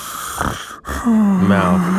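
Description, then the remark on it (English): A voice imitates heavy mouth breathing, fairly loud: a rough, breathy huff, a brief pause, then a long voiced, groaning breath. “We know it's so heavy mouth breathing.”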